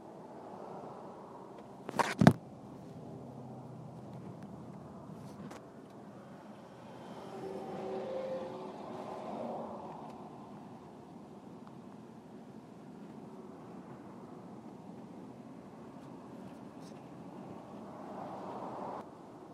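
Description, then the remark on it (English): Steady low rumble of a car driving to work in traffic, with a sharp thump or click early on and the engine and tire noise gently swelling and fading throughout; no one speaks. “Sorry, it took me a little second there to get straight in traffic and all that.”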